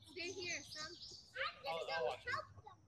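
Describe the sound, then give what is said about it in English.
A bird chirps in brief, high bursts against a background of children's voices and playground chatter, the chirps fairly faint and partly blended with the kids' calls. “I hear a bird.”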